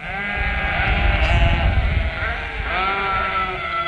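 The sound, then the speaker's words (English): Sheep bleat loudly and nearly continuously, several wavering, quavering cries overlapping one another with a low rumbling background underneath. “Sheep are stupid. Sheep are dumb. Here's an example. Let me show you.”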